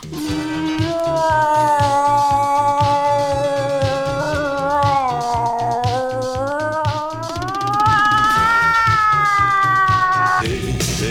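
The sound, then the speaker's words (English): A human voice imitates a cat in heat with one long, loud, wavering yowl that rises and falls for about eleven seconds, over a steady low pulsing beat. “Ooh, I'm a pussy cat in heat.”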